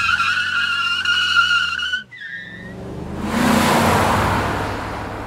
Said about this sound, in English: leaps courageously between the speeding cars.